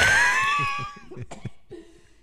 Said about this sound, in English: Ooh, I think that's the first time that I've elicited like coughs from you. Cough laugh. Don't feel too proud. I'm like getting over cold.